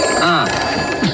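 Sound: telephone ringing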